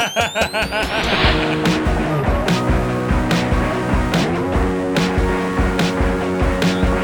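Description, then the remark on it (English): A brief, loud screech of tires with a car engine swerving at the start, quickly giving way to a steady, rhythmic backing track with sharp percussive hits. “But in my utopia, if I want to die, everyone instantly knows and starts swerving their cars into me.”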